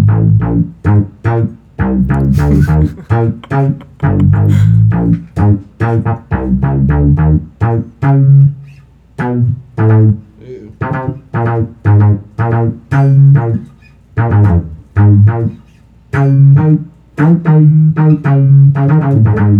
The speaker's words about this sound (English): But that synth sound is always, it's kind of hard to get because there's keyboards doing it. Yeah. And so let me see if I can.